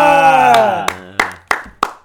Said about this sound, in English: Now, listener at home. I'm gonna clap because I'm apathetic.